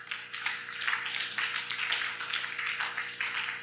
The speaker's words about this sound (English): Are you clapping?